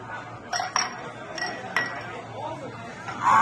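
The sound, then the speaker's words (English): Several glasses clink together in a toast with Irish car bomb drinks, about four bright, sharp taps in quick irregular succession, over a low murmur of voices and room noise. “And let me tell you something, we're gonna do an Irish car bomb.”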